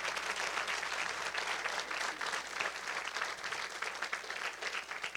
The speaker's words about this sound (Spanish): Yo le he prometido a Dios que toda la gloria será para él en este lugar. Se perdiera una buena oportunidad de darle gloria a Dios y un buen aplauso. Eso es bueno.